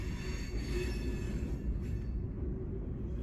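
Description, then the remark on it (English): A train rumbles past with a heavy, continuous low roar and a faint metallic squeal of wheels on rails that fades toward the end. “Why couldn't the train come in like that during our train wreck episode?”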